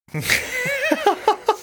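A sudden, noisy sneeze bursts out, then trails into a wavering voiced sound broken by four or five short, evenly spaced pulses, like gasping or a stifled laugh.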